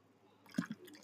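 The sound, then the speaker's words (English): A short pour of champagne into a glass at a microphone: a soft wet splash starts about halfway through and carries on with a faint fizzy trickle. No one speaks. “I feel like that sounds like somebody's peeing every time we pour to the mic.”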